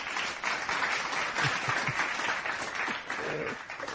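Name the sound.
applause sound effect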